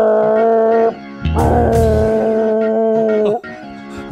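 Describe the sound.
Someone imitates a boat horn with their voice: a short, low, droning blast, a brief pause, then a longer, loud, steady blast that sags slightly in pitch as it ends.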